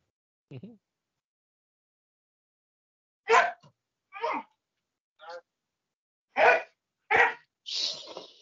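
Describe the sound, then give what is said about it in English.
Dogs bark in a series of about seven sharp, fairly loud barks, one early bark, then a gap, then a quicker run of irregularly spaced barks toward the end. “Even the dogs agree.”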